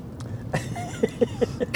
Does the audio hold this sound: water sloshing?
no